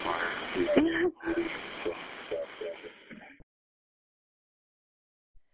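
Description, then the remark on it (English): Shaky, ragged, frightened breathing from a scared, shaking person, with small voiced catches and whimpers, lasting about three seconds before cutting to silence. “So you can hear in my voice how scared I was, and I'm shaking and my breathing.”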